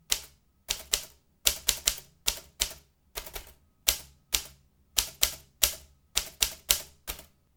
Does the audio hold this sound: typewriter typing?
yes